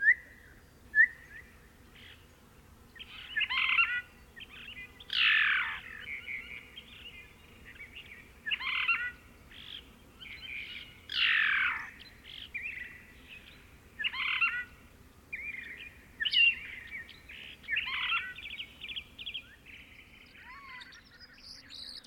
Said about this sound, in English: The Phainopepla's song is comprised of varied phrases, some sounding rather garbled or churred.